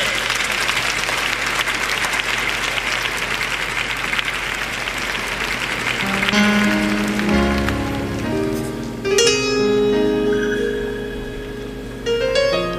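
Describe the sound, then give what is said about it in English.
An audience claps their hands in praise of the Lord in a dense, sustained burst of applause; about halfway through, sustained organ-like chords enter and play over the continuing clapping. “come on, clap your hands and give the Lord some praise.”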